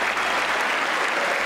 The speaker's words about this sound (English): You're clapping too loud. Stop it.